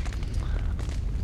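A deep, rumbling explosion roars steadily for about a second, heavy low-end boom with crackling noise spread across the top, loud with no voices.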